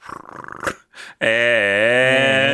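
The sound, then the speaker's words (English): A rough cat purring rumble, then a brief pause and a loud, steady, buzzing purr that carries on for over a second without letting up. “Purring on the beat.”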